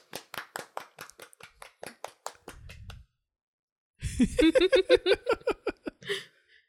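A few people clap quickly and unevenly for about two seconds. After a brief pause comes a loud burst of voices mixed with a few more scattered claps.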